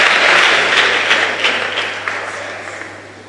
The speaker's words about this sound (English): Clap your hands.